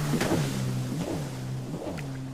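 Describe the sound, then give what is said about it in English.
A small motorboat with a little engine, filled with people, drones steadily in the distance on a lake, its buzzing pitch wavering slightly as it runs past, with no voices. “I can see a small boat in the distance with a little engine. Looks like he will be passing me sometime soon.”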